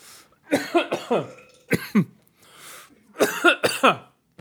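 A person coughs repeatedly and loudly, in a couple of rough, hacking fits of several coughs each, separated by short pauses, with no talking.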